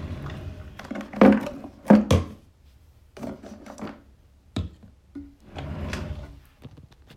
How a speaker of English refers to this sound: Excuse me while I get something out of the drawer.